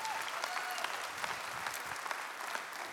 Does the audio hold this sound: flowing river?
no